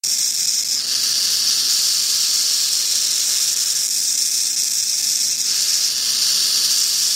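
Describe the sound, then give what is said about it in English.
A continuous, harsh rattling hiss from a burrowing owl, the noise it makes when threatened, sustained and fairly loud, pulsing slightly in intensity like a rattlesnake's buzz, with no voices. “When threatened, the owl retreats to the burrow and produces rattling and hissing noises similar”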